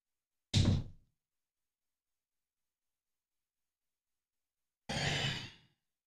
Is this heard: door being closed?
yes